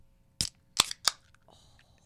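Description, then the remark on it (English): A can of Breckenridge Brewery Mile High beer cracking open: three sharp, bright clicks in quick succession as the tab gives way, followed by a faint, airy fizz. No one speaks. “Did you open yours yet?”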